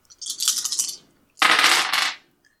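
Dice clatter and rattle in two bright bursts during a tabletop game, the first a choppy tumble lasting under a second, the second a denser, louder roll, with a brief pause between and no voices.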